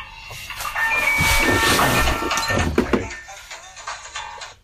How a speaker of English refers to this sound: Cool ringtone. Anyone we know? I don't know this person. Just a spam caller or something.